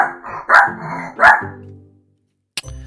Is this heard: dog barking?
yes